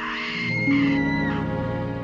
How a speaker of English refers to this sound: And then we hear a scream.